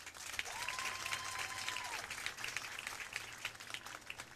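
Steady crowd applause for senior football players escorted by their families, dense and sustained for several seconds, with many hands clapping at once over a low hum, and a faint rising-and-falling whistle-like tone early on.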